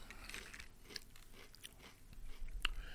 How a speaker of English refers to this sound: That is a damn solid chip. lots of dust. Very salty. Crunch is really good. It is not kettle cooked, so my gums are still intact.